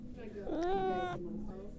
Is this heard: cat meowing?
yes